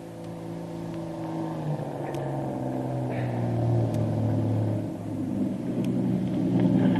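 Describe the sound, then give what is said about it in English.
A motor launch's engine chugs with a low, steady drone as the launch warps into the dock in front of Doc Beard's plantation home. Its pitch wavers and swells slightly as it throttles, running continuously with no voices. “The motor launch that has picked Kitty up is just warping into the dock in front of Doc Beard's plantation home, and the two Marines prepare to take her into the house.”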